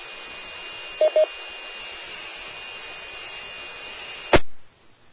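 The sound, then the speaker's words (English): A brief radio key-up: steady static hiss opens the channel, two short beeps sound early on, then the carrier cuts off abruptly with a click, leaving near silence. No one speaks. “I think that was actually a quick key of Whiskey 7 EHS, who didn't answer the first time around”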